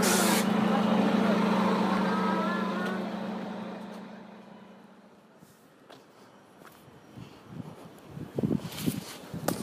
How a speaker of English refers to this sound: This is my bus, so I'm going to stop talking. I'm going to get on this bus.